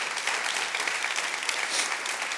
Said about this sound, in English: I like the way if you want to clap, go ahead. That's good.